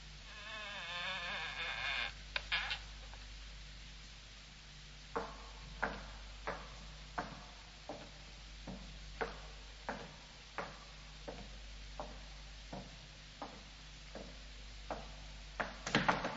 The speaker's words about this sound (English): Well, here's the door. I'll use the skeleton key. Ah, yes, that's it. Now, quietly, my dear fellow.